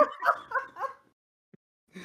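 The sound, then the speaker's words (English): A dog barks three times in quick succession, short yappy calls, not loud, then falls quiet for about a second before another bark begins. “I've got a dog.”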